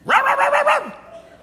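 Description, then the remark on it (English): A person imitates their small dog barking at a woman's little poodle, letting out a quick, loud string of high yappy barks in one breath, with the voice rising and then dropping off. “My little dog would bark at her little Chanel number 5 dog.”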